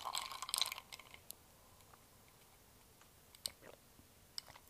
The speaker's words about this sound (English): I think I'm going to have a little drink every time I sit down and record this, just to make it kind of enjoyable. So today I'm sipping on a matcha latte.